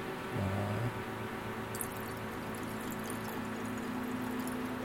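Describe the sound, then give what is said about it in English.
A drink is poured steadily into a glass, a continuous gurgling splash lasting several seconds, with the pitch gently rising as it fills. No one speaks. “So I'm gonna pour one out for you if you're unable to partake at the moment.”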